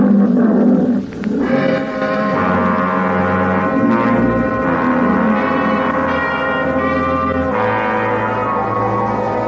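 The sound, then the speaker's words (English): An old Liberian lion roars loudly, a deep, drawn-out rumbling bellow that carries on without pause for several seconds, shifting in pitch, with no voices present. “Nobody answered me but an old Liberian lion.”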